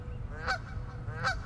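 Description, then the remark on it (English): A large flock of birds filling the sky between walls of forest at the Merced National Wildlife Refuge in California's Central Valley, calling with goose-like honks: two clear, loud honking calls about three-quarters of a second apart, over a steady low rumble of outdoor background noise. “And there was just these kind of walls of forest on either side of us, and birds are just moving. They filled the sky.”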